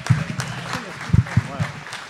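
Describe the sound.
An audience claps in a steady, dense patter of applause, with voices calling out and talking over it throughout.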